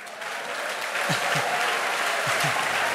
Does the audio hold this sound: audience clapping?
yes